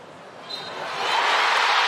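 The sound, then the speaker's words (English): A large stadium crowd and the U.S. soccer players react on learning they have lost to Sweden, after a review showed the ball crossed the goal line: a dense, broad roar of many voices that swells steadily louder over a couple of seconds, with no single voice standing out. “Here's what it sounded like when the U.S. players and the stadium crowd found out they had lost.”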